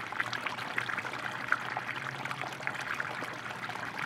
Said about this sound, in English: a small waterfall, not very big. Usually it's more like a stream coming into the pond.